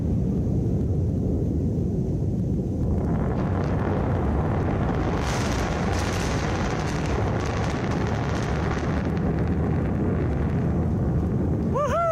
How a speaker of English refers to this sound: double sonic booms.